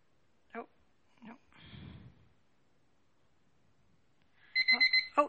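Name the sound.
timer alarm ringing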